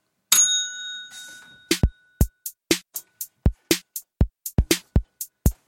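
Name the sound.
bell being dinged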